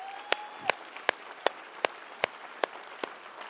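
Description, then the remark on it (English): Applause welcoming people who have just given their lives to Jesus, in the form of steady, evenly spaced handclaps, about eight sharp claps at a regular beat over a soft hiss, with no one talking. “So let's give our friends who have just given their lives to Jesus this morning a huge round of applause and a welcome.”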